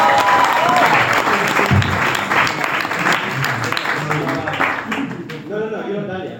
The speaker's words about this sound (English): Can we have a round of applause for our panel?